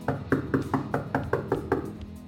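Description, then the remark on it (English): A detective knocks on the wooden front door of a mansion, a steady series of about eight firm, evenly spaced knocks, with no voices. “Detective Bishop knocks on the front door.”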